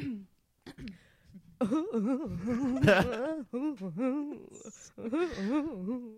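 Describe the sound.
A voice does an impression of exaggerated, theatrical crying: loud, wavering wails and sobbing sounds rising and falling in pitch, with brief pauses between bursts.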